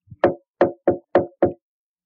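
Soft tapping on a door in the dead of night: a faint light tap, then five quick, evenly spaced knocks, each short and muffled, with silence after and no voices.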